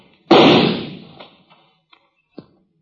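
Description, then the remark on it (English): A single loud gunshot, fired in a canyon at a figure partway up the canyon wall about 30 to 40 feet away, cracks and rolls off in a long, echoing decay, followed by a few faint, scattered knocks and thuds in the quiet that follows. “Oh, I didn't stand to reason that I'd hit him with that shot.”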